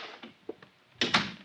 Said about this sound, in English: I said close the door.